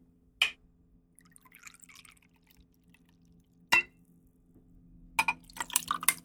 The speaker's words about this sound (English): Put some ice in a glass. Add 1.5 ounces of Pimm's liqueur.